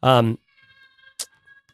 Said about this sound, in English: That's my son yelling in the background. I hope that comes through on the microphones.